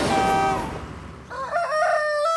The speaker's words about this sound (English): Cock-a-doodle-oo! Went the rooster at McCall's Farm